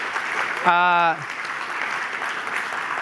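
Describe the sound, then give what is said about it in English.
A crowd applauds steadily for a few seconds to thank the organizers of a trivia night, a dense, even patter of clapping, with one short sustained whoop from someone in the audience near the start. “So I want to just take a moment and give those guys a round of applause because they really were absolutely fantastic.”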